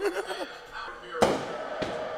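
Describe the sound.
Two sharp firework bangs go off about half a second apart, fairly close, over a steady background hiss, with faint voices and laughter just before.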